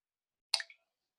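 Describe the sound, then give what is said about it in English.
A single quick plink as a small vitamin C tablet drops into a glass of neat vodka, a bright little splash that fades within a fraction of a second, followed by minor fizzing, otherwise silent and fairly quiet. “I heard a plink and I can see some minor fizzing.”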